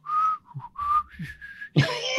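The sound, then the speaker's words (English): A person whistles a wavering, rising tone in short bursts, imitating a motorbike switched to whisper mode, ending in a breathy, hissing rush. No words are spoken. “And then he switches the bike to whisper mode, which apparently makes it go silent, although it's not silent. It doesn't change the noise. No. Well, it whistles a bit, doesn't it?”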